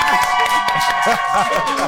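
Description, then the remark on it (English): An audience claps for the men, voting on whether they lead on points, in a quick, irregular patter of sharp hits, with crowd voices and cheering mixed underneath, loud and steady for the full two seconds. “If the men are in the lead on the points right now, let me just hear you clap for them one time.”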